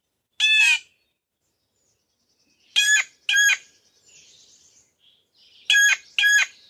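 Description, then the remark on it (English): A blue jay gives a variant call: five loud, harsh, ringing notes, a single one first, then two quick pairs, with faint background bird sounds between. “Here's a little variant of that.”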